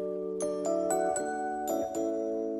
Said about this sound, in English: That's a real electric piano right there. Vibes. Production on this, so good. That's actually done on a Moog.